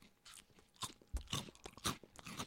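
Crisp crunching of dry maple and brown sugar Cap'n Crunch cereal balls being chewed, a quick series of sharp crackly bites in an irregular rhythm with no talking.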